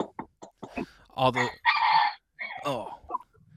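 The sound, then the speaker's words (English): Loud chicken sounds: a string of short clucks, then a strained, drawn-out rooster crow, followed by a few more clucking bursts and a brief low rumble at the end. “Chicken man.”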